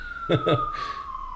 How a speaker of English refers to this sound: It's motherfucking sirens.